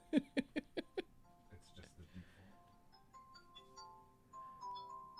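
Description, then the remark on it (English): A short burst of laughter gives way to a soft, gentle phone ringtone: steady melodic chime notes shifting in pitch, moderately quiet, continuing for several seconds. “sorry about that. What a gentle ringtone.”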